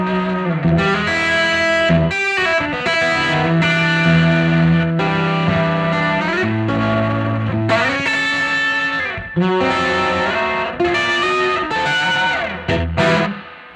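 An electric guitar played through a little Echoplex with a short slapback echo plays a driven, slightly distorted riff of sustained chords and bending notes, loud and steady throughout with no talking.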